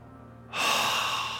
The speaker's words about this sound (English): This YHWH is a breathing sound. It implies a breathing sound. It's the YH, inhale.